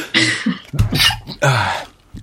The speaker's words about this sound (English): Yeah, well, this is a discussion for another time, but I'm going to sneeze. 1 second.